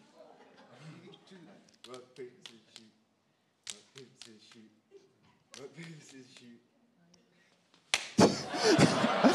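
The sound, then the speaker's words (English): Sharp hand slaps in a finger game land in short clusters between stretches of talking, crisp, with a louder, noisier burst of slapping and commotion near the end. “we stop and go back to the rock, paper, scissors thing, but if not, I keep slapping it until he gets the right finger.”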